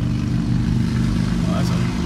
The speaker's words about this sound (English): That's quite the motorcycle.